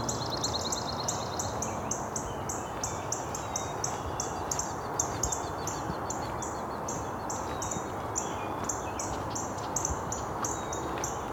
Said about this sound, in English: Some red-winged blackbirds.